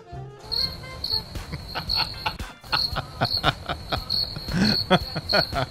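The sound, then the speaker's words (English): Crickets chirp steadily in a dense, rhythmic chorus of high trilling pulses, fairly loud, with no voices over them. “You get two crickets for that one.”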